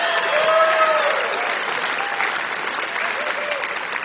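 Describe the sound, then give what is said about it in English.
A crowd claps steadily and loudly for several seconds, a dense wash of applause with a few cheers and a brief whistle rising above it. “He'll do anything for applause”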